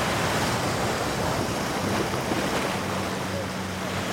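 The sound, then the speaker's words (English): Water churns and rushes steadily beside a boat where about a dozen whirlpools, each maybe 3 or 4 feet across, spin in the water; a dense, continuous wash of sound mixed with wind buffeting the microphone, fairly loud throughout, with no voices. “There are a dozen whirlpools just like it on this side of the boat.”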